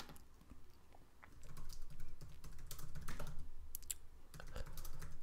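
Rapid, uneven typing on a computer keyboard for a Google search: a stream of light plastic clicks and taps in irregular bursts over a low steady hum, with no voices.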